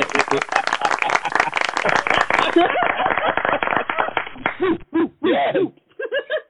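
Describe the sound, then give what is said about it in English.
A crowd claps and cheers in a steady, dense wash of applause for several seconds, which thins out and breaks into scattered voices and laughter near the end. “where's the applause?”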